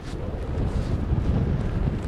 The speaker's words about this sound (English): The wind is faster than I expected, actually. They were saying a sea breeze would kick in, but I thought it would be later this afternoon. It's quite good. It's the perfect direction for long, fast reaches, and it's blowing probably about 10 to 15